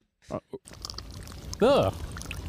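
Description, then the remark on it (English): Two quick short sounds, then a steady wet slurping of liquid that runs to the end, broken briefly by a loud voiced rising-and-falling tone. “Oh, that sounds like you're slurping.”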